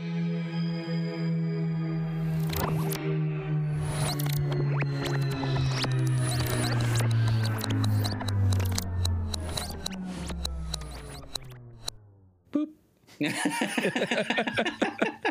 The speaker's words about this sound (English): I think we'll dial up a little Bill and Ted phone booth action. Nice. Beep boop boop boop. Beep boop boop boop.